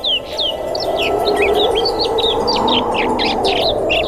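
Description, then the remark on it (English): A steady stream of snow bunting calls, quick twittering chirps and short whistled notes repeating closely, fairly loud, over a constant low rushing background. “The snow bunting, today's Talkin' Birds, featured feathered friend.”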